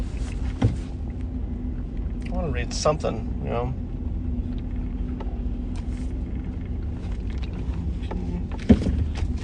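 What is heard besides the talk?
car driving slowly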